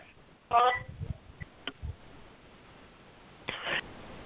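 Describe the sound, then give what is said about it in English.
A telephone rings in two short bursts about three seconds apart, each a brief electronic trill over a quiet background with a few faint clicks and no talking. “I'm sorry, that phone's. Let me silence that ringing just a minute.”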